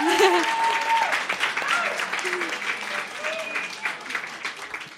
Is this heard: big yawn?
no